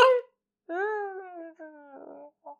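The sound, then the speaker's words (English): A voice imitates muffled screams: a short burst, then a long wavering moan-like cry, a second quavering cry, and a brief final yelp, all strained and stifled-sounding with no words. “You hear moaning like, and you would hear like muffled screams.”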